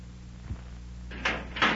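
A living compartment door closes with a soft low thud, then two brisk scraping clicks follow as it is latched and locked, with no one talking.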